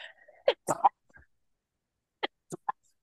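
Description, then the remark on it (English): A person sneezes from allergies in short bursts: a stronger cluster of sneezes first, then after a brief pause a few quick, muffled sneezes in a row, with no talking. “I have to sneeze.”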